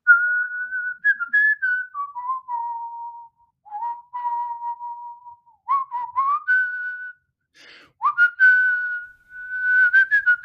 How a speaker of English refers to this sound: As he whistles us to a close